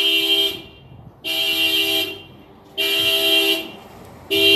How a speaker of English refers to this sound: Amplification of the train in the background. That's amplification of the train in the background.